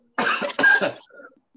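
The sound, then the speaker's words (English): Two sharp coughs in quick succession, loud and harsh, caused by a dog hair caught in the throat, followed by a faint raspy throat sound trailing off into quiet. “I got a dog hair in my throat.”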